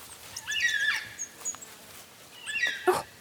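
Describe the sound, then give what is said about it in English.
Black cockatoos high up in a stringybark tree in woodland give two drawn-out, wailing calls, each a harsh, high-pitched cry that bends in pitch, separated by a short pause with faint rustling background and no talking. “I can hear black cockatoos high up in one of those stringy bark trees.”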